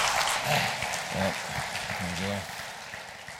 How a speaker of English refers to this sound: Let's give him a round of applause again.